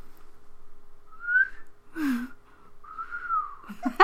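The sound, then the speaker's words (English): A person whistles a few short notes: a quick rising glide, a brief breathy note, then a longer wavering tone, with a short burst of voice at the very end. “No, I whistled!”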